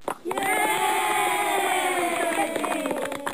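A crowd bursts into loud, sustained cheering and whooping with dense clapping running through it, holding steady for a few seconds before beginning to taper off.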